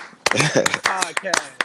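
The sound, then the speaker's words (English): A handful of sharp hand claps for the Pisces in the chat land at an uneven pace, loud and crisp, mixed in with voices talking or whooping over them. “Yo, clap it up for the Pisces in the chat.”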